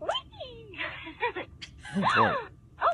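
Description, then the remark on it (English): A Hasbro Trolls doll's gasping sound effect, made when a tickle button on the doll is pushed: a quick run of breathy, high-pitched gasps and squeaky vocal sighs, several short bursts rising and falling, clear with no talking. “Like a gasping sound.”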